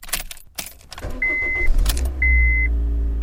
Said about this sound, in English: Yes, the old reliable Honda Fit internal combustion engine.